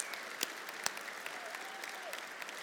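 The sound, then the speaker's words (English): An audience claps steadily together for the sign interpreters, a dense, even patter of many hands with a few sharper individual claps standing out, and no one speaking over it. “By the way, would you give a round of applause to our beautiful sign interpreters who just worked overtime just right now?”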